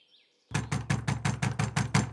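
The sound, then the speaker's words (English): Loud, rapid knocking on a door, about eight heavy blows in a steady rhythm, after a brief faint bird chirp. No one speaks. “Come down at once and open the door.”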